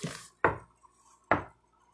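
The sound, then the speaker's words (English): Sharp, solid knocks, two clear strikes a bit under a second apart, following the fading tail of an earlier one. Each hit is loud and quickly decays into near silence, with no voices. “And he would make a knocking sound whenever he did it. It sounded like this.”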